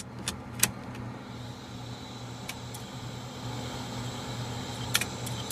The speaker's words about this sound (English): And then the click of death came to the zip drives. So when I was at art school, I lost so many projects to this sound I'm sure we're about to hear.